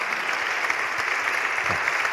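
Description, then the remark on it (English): A steady burst of applause, dense overlapping claps forming a continuous bright wash of sound at an even loudness throughout, with no voices standing out. “Yeah, well, I think we can clap. I think that's most appropriate.”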